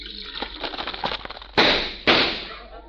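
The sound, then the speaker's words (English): Hot cereal with cream poured over it crackles and snaps in a quick irregular patter, then two loud, sharp pops each fade into a fizzing hiss. “Hey, does it crackle and pop? Well, of course. Just pour some cream over it and see.”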